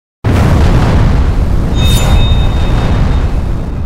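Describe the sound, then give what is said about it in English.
A sudden, loud explosion aboard a spacecraft, coming from beneath rather than from the command or service module, makes the ship shudder and rolls into a heavy, continuous low rumble that fills the whole stretch, with a faint metallic whine rising briefly midway. No voices. “He has to brace himself against the bulkhead and he knows this is another explosion, but it hasn't come from above him in the command or service module.”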